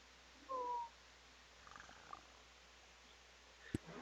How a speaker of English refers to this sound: I hear a cat.